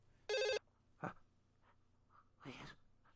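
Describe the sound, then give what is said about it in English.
A single short burst of an electronic telephone ring, loud and buzzy, as an outgoing phone call is placed, followed by quiet breathy noises and faint rustling. “All right, it's ringing.”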